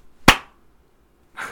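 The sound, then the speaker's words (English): One sharp, loud hand clap for syncing audio rings out with a quick decay, then a second later comes a softer, breathy rustle. No one speaks. “You got a good clap in there?”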